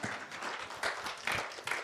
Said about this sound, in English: Let's give Corey a round of applause.